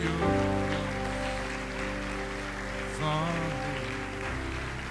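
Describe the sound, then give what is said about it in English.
A church audience claps and rejoices after a prayer, in a dense, continuous wash of applause, while sustained keyboard or organ chords hold underneath and a brief higher melodic line rises partway through. “Church, can we clap and rejoice?”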